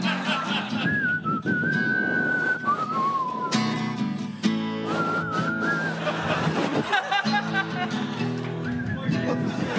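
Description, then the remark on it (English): Someone whistles a short melody in two phrases, clear, with a brief pause between them and a busy, noisy background underneath; the tune is the song Clarko sang to the Hawks team the day after they lost to Geelong. “Do you know how to whistle?”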